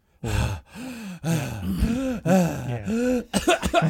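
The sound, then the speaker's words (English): Drawn-out, wavering vocal groans from one nearby person, then a quick cluster of four or five short, harsh coughs at the end, loud and close. “Sac le bleu, I have this cough.”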